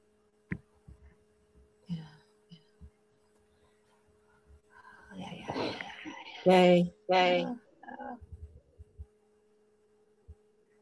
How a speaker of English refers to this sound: I hear that there is an echo in your space. Say that again. There is an echo in your device.